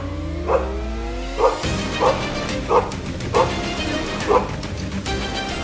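A crime-fighting canine named Kraken barks and yips six times at a steady, slightly uneven pace, over a constant rumbling background like a running vehicle or engine.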